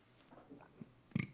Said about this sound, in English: I burped a little bit.